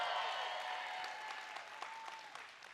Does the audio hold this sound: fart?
no